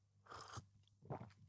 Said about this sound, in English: As I sip my coffee, that felt like a bit of a blind buy podcast break there, listening to me sipping my coffee. I hope that was an unexpected ASMR vibe there.